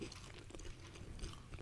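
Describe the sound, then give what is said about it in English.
Soft, sticky chewing of a gooey, spiced pumpkin granola bar, a steady run of quiet moist bites and smacks over about two seconds, with no talking. “It's definitely pumpkin-y. I'm giving it, it's up like a 7 or 8 on the pumpkin scale.”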